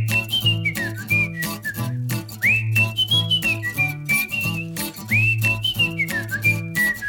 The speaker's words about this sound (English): Do I hear some whistles? I think you hear some whistles, because these are the things we love.